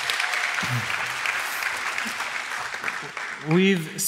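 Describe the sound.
Steady audience applause, a dense wash of clapping that holds at an even loudness for about four seconds, with a few brief voices rising through it near the end.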